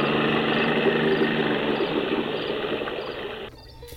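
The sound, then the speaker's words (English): A motorboat engine on a river runs steadily with a loud, broad droning roar and some water noise, holding constant for several seconds before dropping off abruptly near the end. “Good, it works. To the mansion, boat, dear boat.”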